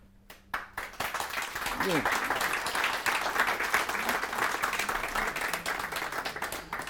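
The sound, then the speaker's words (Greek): An audience applauds steadily after a speaker finishes a talk, dense overlapping clapping that starts quickly and holds for several seconds, with a brief voice cutting through near the start. “Ευχαριστώ για να με χειροκροτήσετε.”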